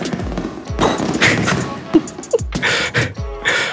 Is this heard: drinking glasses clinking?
no